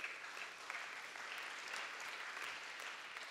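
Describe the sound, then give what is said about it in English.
Light, polite golf claps from a group, a soft steady patter of many hands blending into an even wash for a few seconds, with no voices. “Definitely worthy of golf claps, I agree.”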